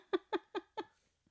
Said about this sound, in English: Puppy snores are the cutest thing, but he is just getting loud. So I apologize if that's picking up.